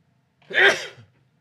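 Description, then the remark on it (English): A single fairly loud sneeze: a quick breathy intake bursting into a sharp explosive release, then a short fading exhale with no talking. “I'd say Gesundheit, but then people would call me a Nazi.”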